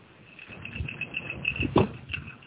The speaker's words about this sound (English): What the heck is that cricketing sound? It sounds like a cricket, but it's not a cricket by the sound of it. Must be the fan. I'll turn it down.